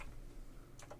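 Soft typing on a computer keyboard as people type into Discord, a few quick key clicks landing near the end over a quiet low hum, with no voices.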